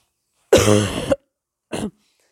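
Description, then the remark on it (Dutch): A loud cough with a harsh, rasping throat sound lasting about half a second, followed after a short pause by a second, quicker cough. No talking. “Even een hoesten tussendoor.”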